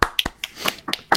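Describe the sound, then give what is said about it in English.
A brief smattering of applause: several sharp, crisp claps in an uneven rhythm over about a second, fairly loud, with no one talking, greeting the announcement of Born to be Wild, a February series of guests who are Black Hearthstone players. “Quick round of applause.”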